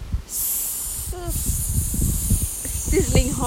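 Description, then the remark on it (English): A voice imitates a sizzling hiss: a loud, sustained hissing that runs nearly the whole time, with low voiced vocal sounds mixed in beneath it. “Sizzling hot babe.”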